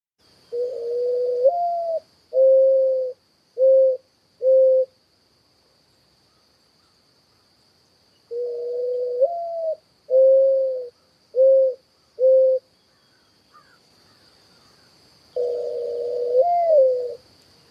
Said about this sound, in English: But my students always think growing up that the bird we're about to listen to is an owl. And so I'm here to tell you this bird is not an owl. So here you go. Mourning dove, sign of spring.